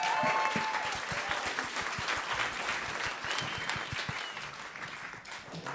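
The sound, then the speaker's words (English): A crowd claps steadily throughout, a dense, sustained patter of many hands at a fairly even loudness, with no voices standing out above it. “Don't clap yet.”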